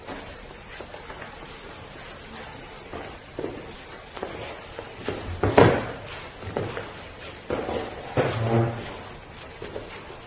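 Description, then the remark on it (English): A chair is scraped and shifted across a hard floor in a few short, uneven bursts, with one sharper knock and a creaking drag near the end, as a son moves his chair next to his mother at a funeral. “A son moves his chair next to his mother to comfort her at the funeral of her late husband.”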